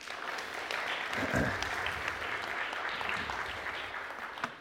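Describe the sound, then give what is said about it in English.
A church audience claps steadily for several seconds for a group of women, a dense, even patter of many hands at a fairly loud level, with a brief voice or cheer rising partway through. “You guys can give them a hand.”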